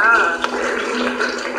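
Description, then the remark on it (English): Water spatters onto hard ground in a steady wash, with a few sharper staccato percussive taps and drips standing out now and then. “The water's hitting the ground and it's making these like staccato percussive sounds.”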